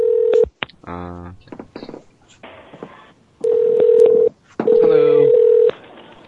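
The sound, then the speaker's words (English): A telephone line rings out in steady electronic tones, one short burst and then two longer ones, clear, with brief dialing-like sounds and a voice in between, as a call is placed to a hotel front desk in Back Bay, Boston. “Yeah, the phone's ringing in the background.”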